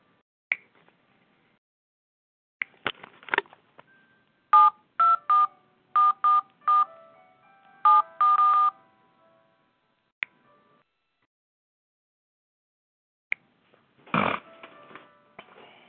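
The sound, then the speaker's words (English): A touch-tone phone number being dialed: about ten short, clear beeping tones in quick succession, with scattered handset clicks before and after and a brief rustle at the end. “Okay, guess I gotta use this phone.”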